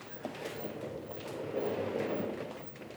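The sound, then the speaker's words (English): A desk chair rolls across a wood laminate floor, a steady low rumbling roll lasting a few seconds with faint clicks and bumps from the casters, with no talking. “The noise you've heard a lot is my rolly chair rolling around on wood laminate flooring.”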